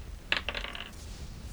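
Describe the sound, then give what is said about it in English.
A twenty-sided die (D20), rolled for day three, clatters across a tabletop in a quick burst of bright, rattling taps that tumble and settle within about half a second, with no voices. “Okay, I need another D20 roll for day three.”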